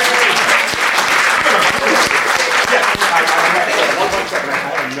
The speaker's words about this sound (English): That's why I like libraries. Give this library a round of applause.